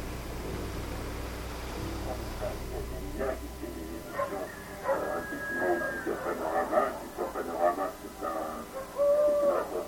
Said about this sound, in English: It is the same owl.